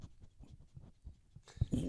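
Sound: dog sniffing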